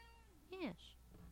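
A single short meow from a male cat rises and falls in pitch, fairly loud, followed by a softer trailing sound over quiet background hum.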